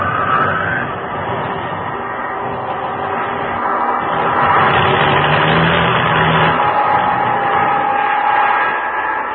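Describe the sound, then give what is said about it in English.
A loud, continuous airplane engine roar with a rough, uneven quality from engine trouble over the open ocean, swelling slightly midway and holding steady without any voices. “And when the motors conked out completely, the sound of wind in the struts and against the fuselage and on the wings was all the sound there was.”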